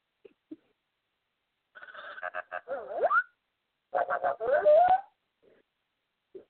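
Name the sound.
electronic beeping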